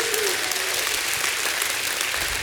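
An audience bursts into steady, dense applause to praise God, many hands clapping at once with a few shouts of praise mixed in, loud and sustained throughout.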